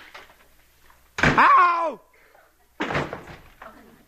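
An apartment's front door bangs open with a brief creaking squeal. A second later comes a heavy thud like someone hitting the floor, next to a throw rug in the hall that slides forward. Both sounds are fairly loud, with quiet gaps between.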